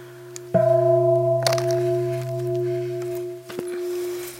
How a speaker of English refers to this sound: Gongs.